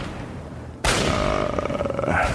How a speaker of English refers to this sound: Some gunfire and laser fire off in the distance. I'm getting used to it now.